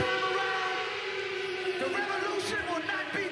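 A loud, sustained siren wails through a live concert recording from the 1987 Def Jam tour in London, its piercing tone riding over dense music and crowd noise for the whole stretch without a break.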